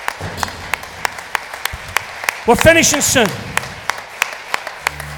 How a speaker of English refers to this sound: Let's applaud the Lord God for that, guys. Come on.